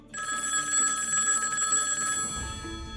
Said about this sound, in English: Sorry, I have to answer the phones. Just give me a second.